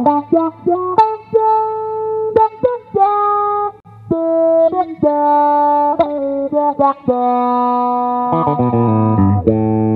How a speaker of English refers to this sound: And then we go into this Rubber Chicken, which is an envelope filter. Oh, wow. Which sounds really good. Yeah, let's hear that.